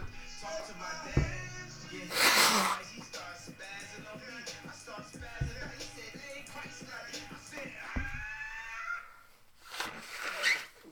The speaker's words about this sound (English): Don't listen to this part. This is a bad part. This is a bad part of this. This is just where I blow my nose.